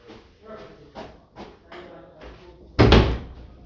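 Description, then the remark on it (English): A door is pushed shut with a single loud thump near the end, preceded by a few seconds of quiet, muffled voices and room noise. “I just got to close the door.”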